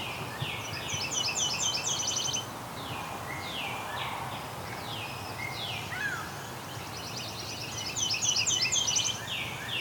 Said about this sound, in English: Okay, there's a Nashville warbler here too, singing. So very similar to mortal warbler or yellow rump warbler, whichever you want to call it. That one there. A little less lazy sounding, maybe.